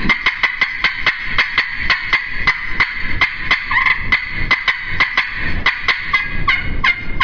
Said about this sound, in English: They cut with real turkey rhythm like you're doing. Well, she's listening. You know, she's making that sound. She's excited, and she's listening between notes.